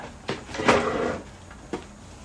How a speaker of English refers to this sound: I gotta, you know what, let me move my chair.